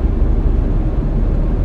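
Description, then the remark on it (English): A car engine rumbles low and steady, with a slightly uneven, sputtering quality and no voices over it; the car is nearly out of gas, about 0.6 miles from a gas station. “It's puttering.”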